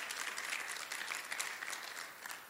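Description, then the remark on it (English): A large group gives a clap offering to the Lord, clapping steadily and continuously. A dense wash of hand claps fills the space at an even level, with no voices standing out. “Can I get a clap offering tonight, amen?”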